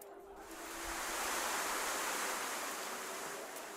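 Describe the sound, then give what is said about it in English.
A rain sound effect of steady rain drumming on the roof of the Grand Bazaar Lodge: a dense, even hiss of countless patters that swells in over the first half second, then holds at a constant level with no voices. “The rain is important because last session, your characters went to a place called the Painted House”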